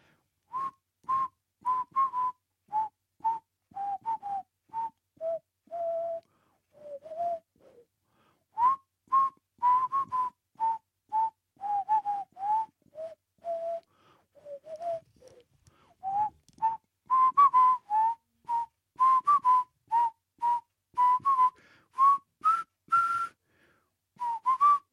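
A person whistles a melodic tune alone, a steady run of clear, bright notes in short phrases with brief pauses, fairly loud, with no talking.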